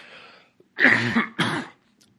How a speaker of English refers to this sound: I'm going to have a coughing fit here today